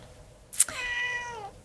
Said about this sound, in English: And that's clearly your cat. My cat wants to participate.